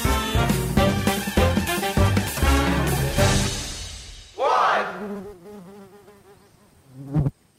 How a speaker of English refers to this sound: It's one of those annoying summer sounds, a buzzing fly somewhere in your room, or even a mosquito zipping around your ceiling late at night.